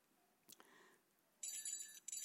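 Hand bells, rung by ten lepers standing at a distance at a village on the border between Galilee and Samaria, ring out in a bright, shimmering, sustained jangle through the second half, preceded by a couple of sharp metallic clinks; fairly loud, with no voices.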